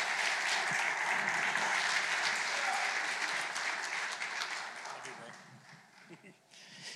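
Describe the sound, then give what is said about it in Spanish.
A crowd at Belmont Assembly church applauds a guest loudly with dense, steady clapping that holds strong for several seconds, then gradually thins and softens toward the end. “Aplauso fuerte para nuestro invitado, por favor.”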